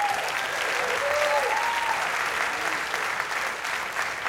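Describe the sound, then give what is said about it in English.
An audience at a live jazz performance claps steadily for about four seconds for a pianist, a dense, even wash of applause with a couple of faint whoops rising through it early on. “How about a round of applause for … at the piano?”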